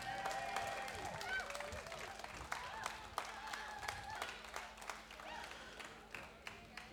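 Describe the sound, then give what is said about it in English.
A crowd applauds itself steadily for several seconds, a dense patter of many hands clapping with sharper individual claps popping out, mixed with scattered cheers and voices. “So let me hear a big round of applause for yourselves, please.”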